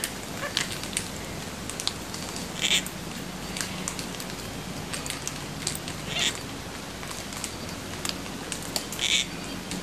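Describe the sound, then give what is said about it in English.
Parrots crack and munch seeds, making irregular sharp snaps and crunchy clicks scattered over a steady outdoor hiss, with a few louder, brighter cracks standing out. No one speaks. “the cracking and munching of seeds is one of the best ways to find parrots because they're noisy eaters, so even when they're not talking to each other, keep your ear out.”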